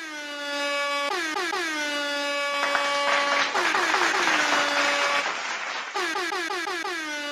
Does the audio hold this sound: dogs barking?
no